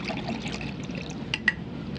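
A waiter pours water steadily into a glass at a restaurant table for two, with a soft, continuous gurgle, ending with two quick clinks of glass, fairly quiet.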